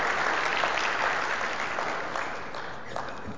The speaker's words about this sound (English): Will you give a round of applause? Thank you.